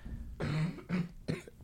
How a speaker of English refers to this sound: Because... Cough's coming back.